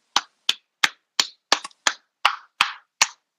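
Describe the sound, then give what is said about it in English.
About nine sharp hand claps applauding a pun, in a steady, moderately quick rhythm, fairly loud, with one clap doubling up partway through and no talking around them. “Can you not clap your cheeks on the podcast? I'm not clapping my cheeks. I'm applauding you on that pun.”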